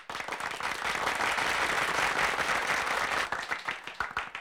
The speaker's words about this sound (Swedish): En applåd.